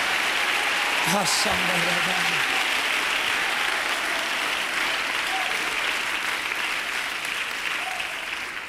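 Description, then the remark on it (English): An audience claps steadily and loudly with faith unto the Lord, dense overlapping hand claps for several seconds, with a brief shout near the start and faint voices mixed into the applause. “Clap your hands with faith unto the Lord and lift up your voice.”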